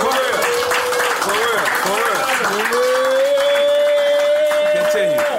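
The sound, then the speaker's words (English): Loud, dense applause from a crowd fills the whole stretch, with steady clapping and cheering, and a voice rises over it in a long sustained shout. “Everybody make noise and clap for that.”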